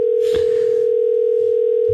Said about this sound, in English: He doesn't really answer on the first ring.